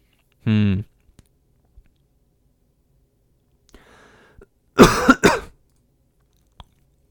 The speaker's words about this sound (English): I got a cough. I got to drink a little bit again.